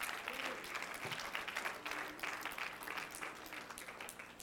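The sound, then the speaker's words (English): An audience breaks into steady applause as a hand clap of praise to the Lord, a dense patter of many hands clapping at an even level for several seconds with a faint murmur of voices underneath. “Somebody put your hands together and give the Lord a hand clap of praise.”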